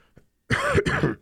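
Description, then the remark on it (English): A loud throat-clearing cough in two rough, raspy bursts back to back, lasting under a second, with no talking around it. “Oh my God, I should have taken a cough drop before I came in here.”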